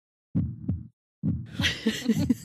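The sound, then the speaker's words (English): A muffled heartbeat thuds in low, steady lub-dub pairs, with a rushing, breathy hiss swelling over the later beats. “It's a heartbeat.”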